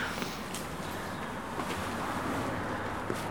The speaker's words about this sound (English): Very noisy here with the cars.